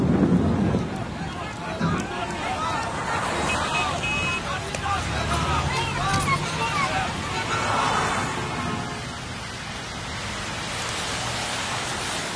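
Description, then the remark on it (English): Steady heavy rain hisses throughout a seasonal storm in Khayelitsha, with a low rumble of thunder near the start and a faint murmur of indistinct voices in the background. “Khayelitsha is prone to flooding from seasonal storms.”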